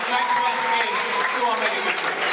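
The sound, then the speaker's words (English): Stadium fans giving a standing applause all around the ground, with Oxford fans standing at their end: a steady wash of clapping and crowd noise that holds at an even level for a couple of seconds, with a murmur of voices mixed into the din. “And applause at the Oxford end.”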